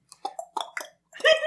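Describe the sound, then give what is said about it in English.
A voice imitates, with its mouth, the gallopy clicking noises Ron makes in Harry Potter: four quick, rhythmic tongue clicks in a loping beat, then a longer, louder voiced sound at the end. “Yeah, he does, like, gallopy clicking noises, like...”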